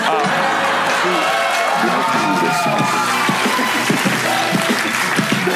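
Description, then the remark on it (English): A large audience claps steadily and loudly throughout, a dense wash of applause with scattered cheers and crowd voices mixed in. “Sorry, I know you guys wanted to clap, but everything I'm going to say is going to be amazing.”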